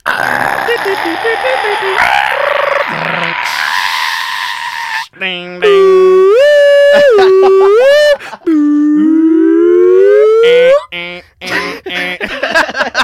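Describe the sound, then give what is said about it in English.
A person vocally imitates a dial-up modem connection chime: a few seconds of hissy, buzzing tones, then loud, sustained sung whines that glide and step in pitch, stopping and restarting. “The dial-up chime is embedded in my brain. I know it by heart.”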